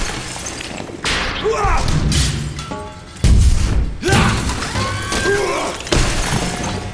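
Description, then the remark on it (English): A robot being smashed apart: loud crashes and shattering impacts come in several bursts, with metallic clangs, ringing tones and heavy thuds tumbling together over a few seconds. “Every time he smashes it apart, it immediately regenerates and reconfigures itself.”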